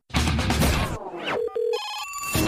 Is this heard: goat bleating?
no